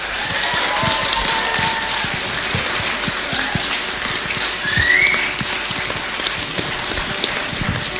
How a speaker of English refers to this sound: I'd love you all to give Trey Shepherd a round of applause